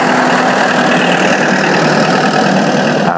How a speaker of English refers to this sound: I'm just going to let this truck go past.